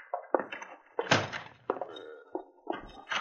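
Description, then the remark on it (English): A back door is pushed open and swung shut as a man comes in, a cluster of wooden thumps and creaks with one louder bang near the middle, with no talking. “Here he is now, coming in the back door.”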